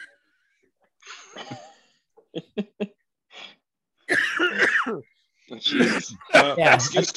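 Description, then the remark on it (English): Harsh coughing: a wheezy rasp, then three short sharp coughs, followed by longer, rougher hacking fits with a strained, wheezing edge, no clear speech. “I'll try to fill in while everybody's taking a coughing break.”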